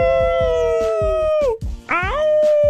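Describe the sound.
A person imitates a wolf howl, mimicking the 'Florida meth wolf': a loud, long sustained howl that sinks in pitch, a brief break, then a second howl rising back up, over a steady low thumping beat.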